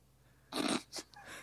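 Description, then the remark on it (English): A cat snuffles right up against the microphone: a loud, breathy sniffing burst, a second shorter puff, then a faint little snort, with no talking. “Oh no! It's gonna step on the keyboard.”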